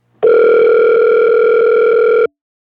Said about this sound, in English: we're going to give him a call now. So let's see if JR answers the phone.